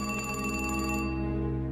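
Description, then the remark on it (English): A telephone rings with a steady, bright electronic tone that trills rapidly through the first second, then holds on as a sustained hum. It is fairly loud, with no voices. “About 8:30 that evening, she called me on the phone.”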